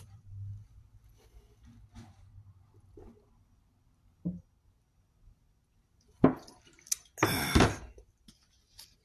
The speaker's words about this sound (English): I usually don't drink out of the container, but it's almost at the end.